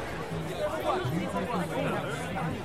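A crowd of people sitting on the grass, meeting friends, hugging and talking while waiting to gather and form a march, chatters steadily. Many overlapping voices blend into a continuous babble with no single voice standing out.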